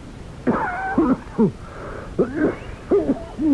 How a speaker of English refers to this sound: That's a wicked cough, Professor Valdemar.